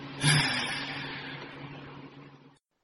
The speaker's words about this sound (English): you can probably tell because you can hear the sound of the car moving.